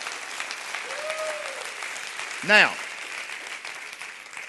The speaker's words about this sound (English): Clap your hands for the reading of the word tonight.